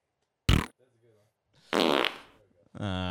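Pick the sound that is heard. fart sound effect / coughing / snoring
fart sound effect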